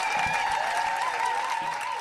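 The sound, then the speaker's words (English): A comedy show crowd applauds and cheers loudly and steadily for comedian Ryan Hamilton, dense clapping mixed with whoops and a few sustained high shouts carrying over the noise. “And make a lot of noise for Mr. Ryan Hamilton.”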